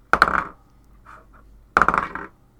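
Two quick bursts of two twelve-sided dice clattering across a hard tabletop, each a rapid rattle of small clicks and bounces that settles within half a second, with a brief soft rustle between them.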